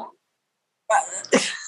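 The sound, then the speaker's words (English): Two harsh coughs from a woman burst out after a brief pause, loud, the second sharper and breathier than the first. “I had to mute myself because I've been coughing, so I didn't want to miss.”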